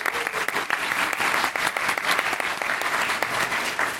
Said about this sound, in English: That's a very, very fun, very interesting question. Round of applause.